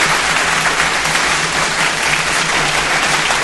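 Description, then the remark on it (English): A sustained burst of applause, many hands clapping in a dense, steady wash of noise at even loudness for a few seconds, with a faint low hum underneath and no voices, applauding the country that produced a tech unicorn. “And applause to the country who gave us a unicorn.”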